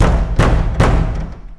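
Hagrid knocks three times on the huge front door of a castle, made of hard oak wood: three heavy knocks, evenly spaced, each landing with a deep booming thud that rings on briefly after the final blow.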